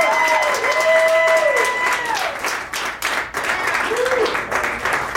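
A crowd of about 1,000 in Dallas County applauds steadily and loudly to welcome a performer, dense clapping filling the whole stretch, with a few gliding whoops or whistles rising and falling over it.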